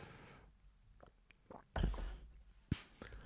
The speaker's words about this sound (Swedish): Måste ta en klunka.